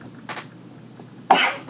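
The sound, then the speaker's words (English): A sneeze: a brief, softer breathy burst, then a loud, sharp, hissing explosion of breath that trails off quickly. No one talks. “For our audience, that's the best way to respond to anybody who sneezes.”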